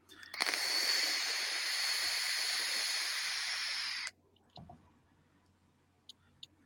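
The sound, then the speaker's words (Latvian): A long, loud, steady rip of a package of ready-made vape coils being torn open, lasting several seconds before stopping abruptly, followed by a few faint handling clicks and rustles. “Pagai es atraušu vaļā cukas.”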